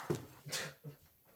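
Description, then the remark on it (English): A female dog lets out three quick, high yipping barks in a short burst, fairly faint, with no one talking over them. “Well, sorry about that, my dog barks a lot.”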